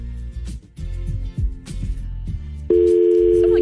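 A steady telephone dial tone on a studio phone line starts abruptly partway through and holds loud and unbroken to the end, preceded by a few seconds of crackly line noise and clicks.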